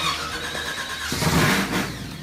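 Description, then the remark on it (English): A race car engine cranks and fires up, then revs hard with a loud, rising roar and a raspy high-pitched whine, with no talking. “You're building, tinkering, or tuning your race cars. Kick it in the guts”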